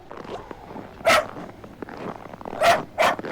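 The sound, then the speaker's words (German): A dog barks three times: one sharp bark, a pause, then two quick barks in succession, loud and bright against a low, steady background rustle. “Hey, Oskar, zieh doch nicht so an der Leine.”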